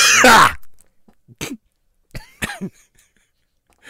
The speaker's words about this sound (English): That was the Manila smog cough I've had.